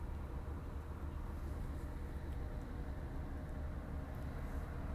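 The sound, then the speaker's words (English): A heavy truck engine rumbles steadily close by, behind the speaker, a deep, loud drone that holds constant throughout without rising or fading, with no voices over it. “It's some loud-ass truck behind me making all that noise for no good reason.”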